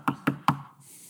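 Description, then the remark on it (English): A knock on a door at 3 o'clock in the morning in pouring rain: three firm knocks in quick, even succession, followed by a soft hiss of background noise. “A man woke up one morning, 3 o'clock in the morning, and knocked at his door.”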